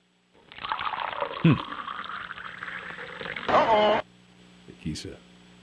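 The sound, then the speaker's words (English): Heavy, hissy breathing of a caller from Kansas City on a radio phone-in line: a long rough exhale for a few seconds, then a shorter burst of breath, with faint low thumps after it fades. “I hear him breathing, though, so he's not died.”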